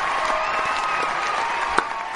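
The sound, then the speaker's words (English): Canned studio audience applause played on the show Meet the Movie Press: a steady, dense wash of clapping at an even loudness throughout, with a faint tonal hum running beneath it and one brief sharp clap standing out near the end. “We got some... canned applause for you”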